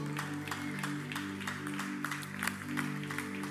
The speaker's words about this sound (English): If you believe that, clap your hands unto the Lord.